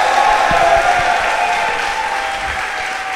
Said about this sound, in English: So can we get a round of applause? We're about to do a Houston draft.